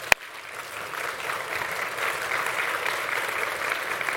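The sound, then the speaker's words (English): An audience claps steadily for visiting pastors who are leaders in the Promise Keepers movement, a dense wash of many hands applauding at an even, sustained level, with one sharp click or pop right at the start and no talking. “Give them a big round of applause real quick.”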